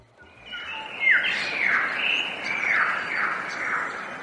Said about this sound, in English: We leave you this week in the Blue Mountains. Bird calls reverberate in a deep gorge in Blue Mountains National Park. Here, west of Sydney, Australia, it's a landscape filled with cliffs and waterfalls and sandstone rock formations